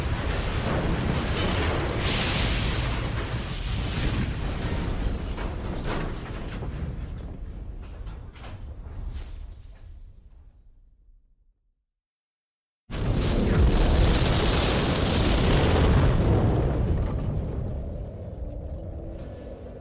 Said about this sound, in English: Don't be frightened, Dale. Plane has crashed.